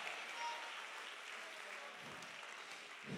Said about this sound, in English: Clap your hands this morning. Give him praise. Come on, he's a good God.